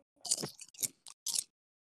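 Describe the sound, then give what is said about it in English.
Crisp crunching of Doritos chips being chewed, four quick crackly bites in an uneven rhythm over about a second and a half, with no talking, then quiet. “You hear that crunch?”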